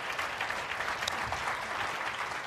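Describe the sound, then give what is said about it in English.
An audience claps steadily after a speaker finishes and thanks them, a dense, even wash of applause that holds at a constant level from start to finish, with no voices standing out above it. “Big round of applause.”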